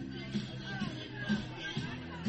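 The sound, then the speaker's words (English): Steady crowd murmur at a high school football game between the Panthers and the Greyhounds, with fans on the Dixie and Tri-County North sides; a low blend of many overlapping voices and chatter with no single voice standing out, holding at a moderate level throughout. “Good crowd on hand here from the Dixie side as well as the Tri-County North side.”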